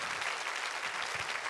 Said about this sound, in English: How many of you are glad to be in the house of the Lord this morning? Can you give the Lord an applause for being in the assembly of the saints together? Amen.